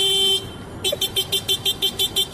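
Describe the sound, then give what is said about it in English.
A man's voice mimics a small motorcycle horn: one long nasal honk, a brief pause, then a quick, even string of about eight short beeps, loud. “Well, it was a motorcycle horn. Oh, okay. But it was a guy impersonating it.”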